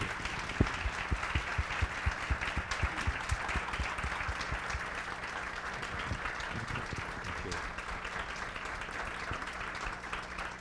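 An audience claps in a steady round of applause, dense overlapping hand claps holding at a moderate level for about ten seconds without fading.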